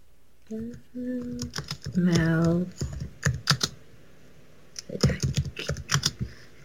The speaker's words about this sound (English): Yep, she's looking it up, folks. You can hear her typing,